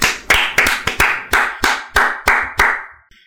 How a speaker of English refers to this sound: And, hey, let's give a big round of applause to a returning champion to Thought Cops.